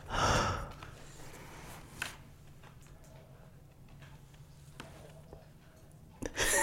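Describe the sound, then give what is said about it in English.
A dog snorts loudly near a microphone, a sharp breathy huff, then faint breathing and a few soft clicks before another short snuffle at the end. “I think that's our little hellhound.”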